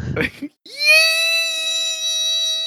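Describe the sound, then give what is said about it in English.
After a quick breathy intake, a voice lets out a long, steady, high-pitched squeal of glee, loud, holding for about two seconds with no other sound around it. “And honestly, I think that's gonna be the sound like in the panel coming out of her the entire time that she's jousting is just yee!”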